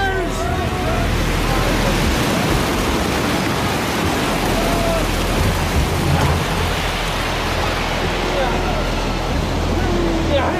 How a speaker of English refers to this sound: Well, Captain? I've never seen a storm die so fast.